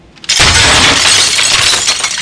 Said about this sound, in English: A couple seconds later, he sees the moped bearing down on him again. The Ferrari is flat out, and there's nothing he can do. Suddenly, the moped plows in the back of his Ferrari.